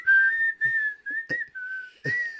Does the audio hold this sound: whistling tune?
yes